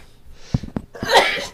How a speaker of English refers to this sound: Excuse me. Sneezed. Wow. Allergies in Vegas are coming around. If you're going to sneeze, tell me.